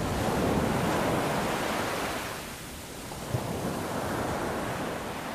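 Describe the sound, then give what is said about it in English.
Ocean waves crash on the shores of Santa Barbara, shown on a massive wraparound projector screen in a theater room, in a steady, roaring wash of surf. The roar eases briefly midway before the next wave builds again, with no voices present. “There, sitting among the empty seats, was Dallas, watching the waves crash on the shores of Santa Barbara.”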